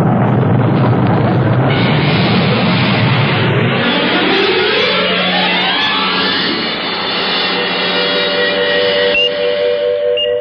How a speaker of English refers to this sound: All engines running. Liftoff. We have a liftoff at 12:12 on the Robert Goddard.